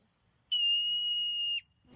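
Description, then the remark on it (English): A person imitates a beaver's scream with one loud, steady, high-pitched whistling squeal lasting about a second, followed by a brief soft rustle. “Is that you doing the beaver?”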